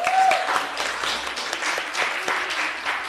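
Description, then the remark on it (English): An audience at an event claps for themselves for sticking to the theme, a steady, dense, continuous patter of many hands at a fairly loud level, with a brief high whistle at the very start. “Please clap for yourselves.”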